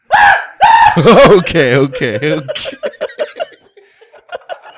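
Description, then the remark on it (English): A person demonstrates a scream: a piercing, very loud human scream overloads the microphone into harsh distortion, then trails off into a string of breathy laughs fading quieter toward the end. “You still clipped the mic.”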